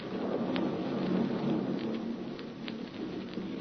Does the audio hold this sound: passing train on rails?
no